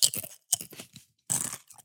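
Loud crunching of a tortilla chip being bitten and chewed, several sharp crackly bursts in an uneven rhythm with brief pauses between bites.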